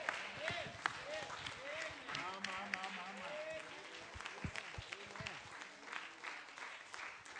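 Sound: audience applause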